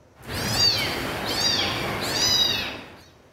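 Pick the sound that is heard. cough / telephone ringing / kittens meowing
kittens meowing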